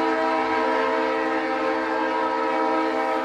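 A loud, sustained train horn blares steadily for several seconds, its layered tones holding constant over the rumble of a rolling train, with no voices present.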